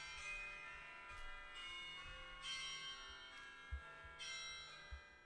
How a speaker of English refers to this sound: I'm not going to lie. First of all, whenever we're talking about scary shit, your phone decides to do scary shit. Yeah, I don't know what's up with that. Second of all, I hate it. Those bell ringing alarms. Yeah, that's the worst.